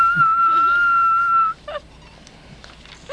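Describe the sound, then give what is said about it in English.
A person whistles one loud, steady, high note from the back pews of a church during Sunday prayer, held clearly for about a second and a half before cutting off, followed by faint background noise and a few soft, brief sounds. “I asked God to teach me to whistle, and he did.”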